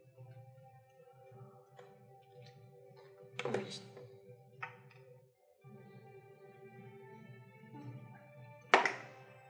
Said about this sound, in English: Sure, do the Chaos Bolt. Whatever you got. Whatever you think is a good idea. I shall upcast it again. Alright, roll them dice.